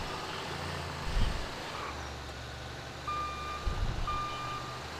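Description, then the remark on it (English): A heavy truck rumbles low and steady while two sharp, evenly spaced reversing beeps sound out, with a couple of louder engine surges underneath. “I'm here with my big truck.”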